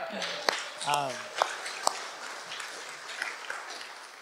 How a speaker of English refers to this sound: Yeah, go ahead. Your applause.